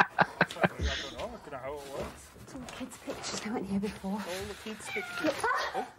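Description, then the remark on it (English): A jump scare: a few sharp bangs open into a loud, wavering cat screech, followed by more drawn-out yowls and hisses over a busy, noisy background with muffled voices. “Oh, bloody cat scare.”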